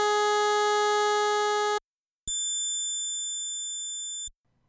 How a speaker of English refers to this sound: These notes are played on three different noise generators, or oscillators. The first is a square wave.